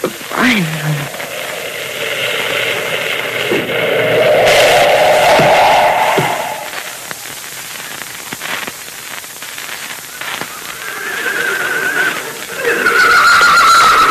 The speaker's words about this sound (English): Moccasin's horse, Rainbow, stopped at this spot.